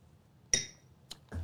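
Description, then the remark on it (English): A sharp, bright clink of glasses rings with a high, shimmering tone that fades quickly, followed by two softer, duller knocks. No one speaks. The glasses are clinked in a toast as people take a shot. “we're going to sidetrack one more time and do a shot. Cheers.”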